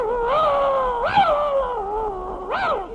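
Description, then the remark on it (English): A dog barks and howls in long, drawn-out cries, swelling three times in quick succession, fairly loud with no talking over it. “Will your dog bite me?”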